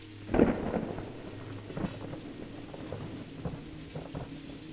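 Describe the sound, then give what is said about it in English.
A thunderstorm with a deep rumble of thunder breaking early on, then steady rain hissing and pattering on surfaces, with a few fainter thunder swells rolling. No one speaks. “It's been a hot summer with amazing electrical storms and unpredictable weather.”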